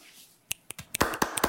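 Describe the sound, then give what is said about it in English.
Several crisp finger snaps, fairly loud, come irregularly and speed up into a quick cluster, as if a few people are snapping together after a haiku reading; no one speaks. “Let's snap. Are we snapping? Are we clapping? Snap, snap, snap, snap, snapping and clapping.”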